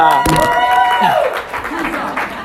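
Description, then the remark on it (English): A crowd applauds a speaker's joke with dense, steady clapping that fills the whole stretch, while a voice rings out over it near the start and then fades back into the noise. “That was meant to be a joke, but you applauded, so thank you.”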